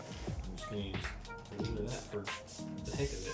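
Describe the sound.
A couple of short, hissing aerosol bursts of hairspray, sprayed by a man onto the floor, cut through near the middle, fairly loud, with people talking over and around them throughout.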